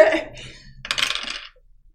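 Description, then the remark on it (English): Dice rattle and tumble across a hard tabletop in two quick clattering bursts, the second brighter and busier, fairly loud before settling into quiet. “The dice? I'm not sure on that particular die.”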